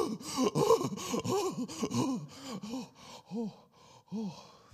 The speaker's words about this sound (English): and I lost my balance and went headfirst into the creek in my waders, and all of that wonderful November invigorating water went straight into my waders and all the way down. It was freezing. So I stood up gasping.